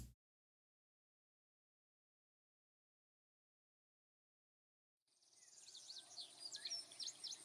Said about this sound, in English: Nice little Tweety birds and all that kind of good stuff.